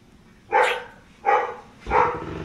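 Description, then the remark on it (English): A dog barks three times in a steady, evenly spaced sequence, each bark loud and full-bodied, with only faint background noise between them. “The dog. The dog is so funny.”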